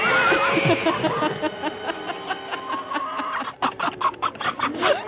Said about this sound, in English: It's the one with a lot of animals. No, it's like horse, cow.